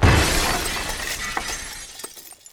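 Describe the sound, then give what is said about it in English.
A glass door shatters as someone runs through it: a loud crash with a sharp initial burst, followed by tinkling shards scattering and falling for a couple of seconds before fading out. “Here she comes, running through the glass door.”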